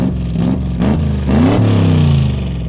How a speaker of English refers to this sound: And there's a garbage truck outside. Yeah, I know.